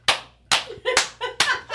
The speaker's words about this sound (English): It's not even like the like normal hand clap. It's the fucking cupped one, right?